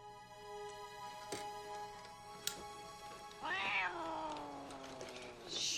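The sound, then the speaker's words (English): A cat lets out one long, drawn-out meow that slides downward in pitch, fairly loud, over a steady tonal hum, with a couple of faint clicks beforehand and no speech. “Jen felt really guilty putting that cat in the bag over and over again”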